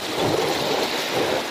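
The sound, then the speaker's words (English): A river flows with a steady, continuous rush of water, fairly loud, with a dense hiss and low churning and no voices; the river has a decent flow, about 500 cubic feet per second below average. “There's actually a little bit of water in this river. There's some, yeah. We're doing well, actually. This is a pretty decent flow.”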